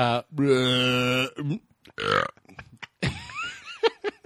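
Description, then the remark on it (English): A voice makes a long, deliberately fake burp, a low droning belch lasting about a second, followed by a shorter burp-like grunt and a few scattered laughs and vocal noises. “Fake burp, fake pulling.”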